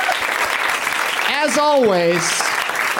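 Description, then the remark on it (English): Sustained applause from an audience for guests Samm Levine, Kristen Bell, Sara Paxton, and Pat Healy fills the whole stretch, a dense wash of clapping, with a voice rising over it midway in a drawn-out whoop or cheer. “One more round of applause for Samm Levine, Kristen Bell, Sara Paxton, and Pat Healy.”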